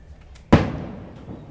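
A single sharp bang, like a firework going off outside, bursts out suddenly and then fades in a short, rumbling decay. It's moderately loud, with no talking.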